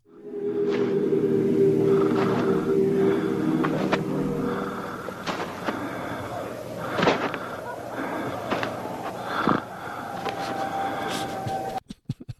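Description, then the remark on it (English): A cardboard box of Triscuits crackers being opened while someone walks to the refrigerator to get a cheese stick, with scattered rustles, crinkles and sharp clicks mixed with irregular footsteps, over a steady low hum during the first few seconds. “That was actually me opening a box of Triscuits as I traipsed to the refrigerator to pick up a cheese stick.”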